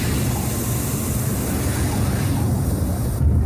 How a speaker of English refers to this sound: Parachute opens. And the jetpack's eight engines light up.